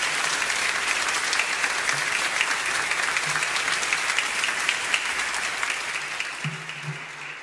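A church audience applauds its church staff during a morning service, a steady, dense, sustained clatter of many hands clapping for several seconds with no voices rising above it, fading only slightly near the end.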